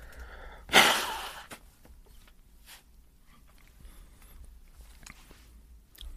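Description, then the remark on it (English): A person blows their nose once, a loud, harsh, half-second burst of air, followed by several seconds of quiet rustling and faint sniffling with no talking. “And I have to blow my nose.”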